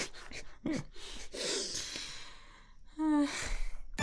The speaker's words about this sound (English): I'm sorry, I was yawning.